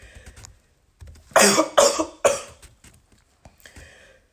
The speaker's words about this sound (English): I had a slight coughing fit at the end of that last segment.